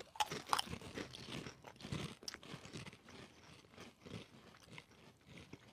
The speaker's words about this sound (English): we're all gonna take a bite. All right. A bite. Why not just eat the whole chip?